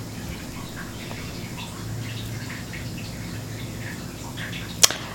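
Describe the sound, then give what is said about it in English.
A small cat water fountain trickles quietly and steadily, with soft bubbling patters over a low hum and one sharp click near the end. No one speaks. “I just realized that we can hear the little water fountain from my cats.”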